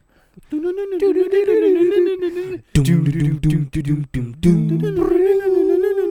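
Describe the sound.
A person howls in imitation of wild dogs: long, wavering cries, broken in the middle by rougher, lower yelping bursts before the high howl returns.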